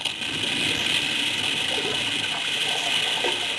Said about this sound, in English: Look at that earth slide.